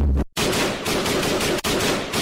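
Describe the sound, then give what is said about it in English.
A loud, sustained burst of machine gun fire, rapid and dense, with a brief gap near the start and another short break before the rattling continues. No voices. “Get yourself shot.”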